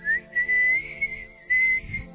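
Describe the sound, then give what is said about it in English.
A person whistles along to a song, a wavering tune in short phrases, the pitch sliding up and down, with faint background music underneath and a brief low rustle near the end. “Are you whistling along with a …?”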